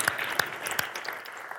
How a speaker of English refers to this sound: So can you just stand up and give yourself a hand? Would you just do that with me? Just give McDowell Mountain Community Church a great applause and hand.